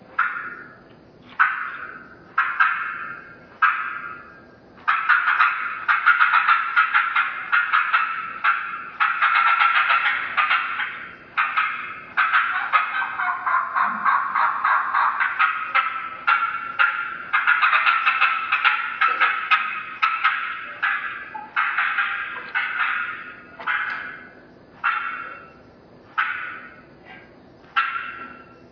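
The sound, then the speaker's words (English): A turkey call played by caller one, cutting like an excited hen: loud, sharp, irregular clucks fired in rapid bursts, running into a dense, nearly continuous flurry mid-way, then tapering back to spaced clucks. No talking. “Caller one, when you're ready. Cutting of the excited hen.”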